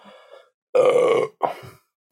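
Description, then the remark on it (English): A loud, drawn-out burp rumbles for about half a second, followed by a shorter second belch and a faint breathy sound before it. “Oh my God, burping a lot.”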